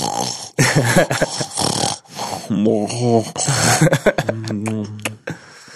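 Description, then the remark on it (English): A voice imitates loud snoring with a series of rough, rattling snorts and throaty, buzzing inhales, some with a vibrating low drone, repeated in uneven bursts over several seconds. “I'm depending on my diet, but sometimes I probably like snore really loud.”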